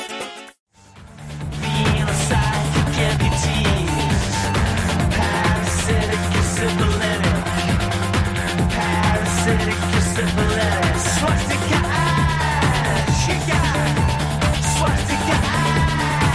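A driving electronic rock track plays loud and full, with a steady pulsing bass line, dense layered synths and guitars, and sweeping effects, kicking in after a brief silence near the start.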